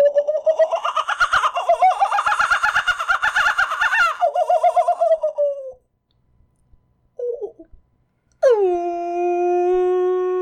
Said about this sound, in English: That's a kookaburra.